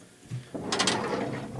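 A door is pulled open with a close, mechanical rattle: a few quick clicks and scrapes, then a steady grinding noise that carries on to the end. No one speaks.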